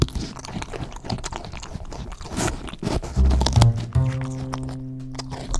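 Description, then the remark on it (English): A wombat crunches on carrots up close, with rapid, loud, irregular bites and chewing. Partway through, low sustained music notes swell in beneath the chewing. “Watching them munching on grass, crunching on carrots,”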